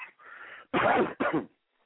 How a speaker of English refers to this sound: Pardon my coughing, but I puff so often. It's like when I light, I keep dragging.